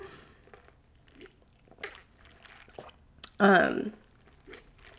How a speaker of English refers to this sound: Let me sip my matcha. Hold on.